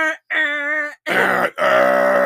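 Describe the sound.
Someone imitates a train horn with their voice: four sustained, buzzy honks in quick succession, the later ones louder and fuller, with no other talking. It imitates a boss's train horn heard while coming in on the freeway in pouring rain.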